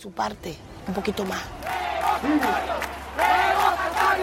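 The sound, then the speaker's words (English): A protest crowd of opposition supporters chants loudly in unison, demanding that a recall referendum take place, voices rising and falling in repeated rhythmic phrases that blend into a dense, shouting roar. “The crowd are calling for a recall referendum, demanding that it take place.”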